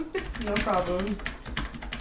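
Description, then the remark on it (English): Rapid, clicky keystrokes on a computer keyboard, fairly loud, tapping in quick irregular bursts while a voice briefly murmurs in the background. “Your keyboard is amazing, by the way.”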